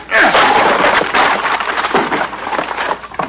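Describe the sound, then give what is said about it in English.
A door is forced open with loud, crunching crashes and splintering thuds, a rough burst of impacts that rumbles on for about three seconds before tapering off. “I'm going to crack that door open. once more ought to do the trick.”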